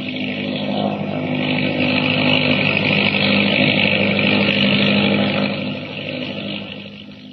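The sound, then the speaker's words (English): An autogyro's engine and huge whirling propeller roar in a steady, loud, droning whir as it takes off, ascending almost vertically over the trees from the grounds of Stone House at night. The sound holds for several seconds, then gradually fades away near the end. No voices are heard. “look, they're getting away in an autogyro.”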